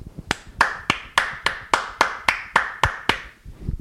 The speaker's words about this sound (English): Wait, I've got to put the mic down so I can clap.